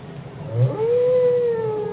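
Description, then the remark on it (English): A long, mournful song of a male whale in the ocean glides upward and then holds a steady, drawn-out tone with a faint echo of overtones, heard alone against a low rumbling background. “In the ocean, the other whales will pick up the song and pass it on.”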